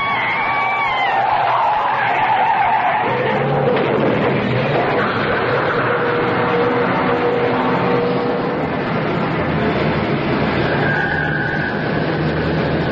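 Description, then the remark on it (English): A car with failed brakes skids with loud, sustained tire squealing and engine roar, the screech wavering over several seconds before settling into a continuous grinding rumble, intense with no voices. “The brakes are gone. I'm down to the floor.”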